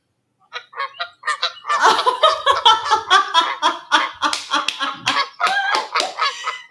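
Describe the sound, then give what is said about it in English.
A flock of Canada geese honks repeatedly and loudly, overlapping calls in a dense, continuous clamor that starts sparse and builds, with no talking. “What is that? It's a Canadian geese.”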